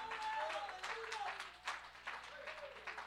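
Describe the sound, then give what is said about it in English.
An audience claps their hands in a dense, steady patter, with raised voices calling out over the clapping throughout. “Somebody clap your hands and magnify Him.”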